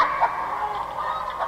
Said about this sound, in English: I have a little chicken.